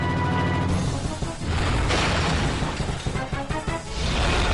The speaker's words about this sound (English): T-Rex coming in through the window. What game could this possibly be? Dino Crisis. Yes! Crisis Dino. Made by Capcom, the company that pioneered the fine art of shit jumping through windows.